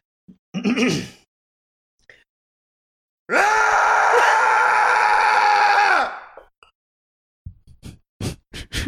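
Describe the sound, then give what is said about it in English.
A person gives a loud, sustained, practiced yell lasting nearly three seconds, strong and harmonic with a slightly strained, crowing quality, preceded by a short vocal burst and followed by brief clicks or taps. “Do you guys want to hear a yell that I've been working on?”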